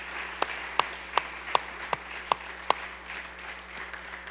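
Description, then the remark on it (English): Audience applause: a steady wash of clapping with a few sharp, evenly spaced claps standing out at a brisk beat, fading out toward the end with no talking. “Give them a hand.”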